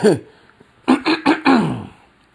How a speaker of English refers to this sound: Let me clear my throat.